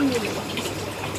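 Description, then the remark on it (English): A brief burst of sloshing water splashing into a person's ear, a steady wet rush lasting about a second, with a faint tonal whistle near the start. “You just splashed water in my ear.”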